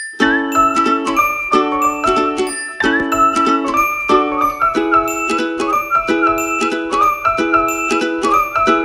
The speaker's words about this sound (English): Right, so our three must-haves, the ukulele, the whistle, and the glockenspiel. Let's hear them together and listen to how the glock holds the steadiness of the rhythm.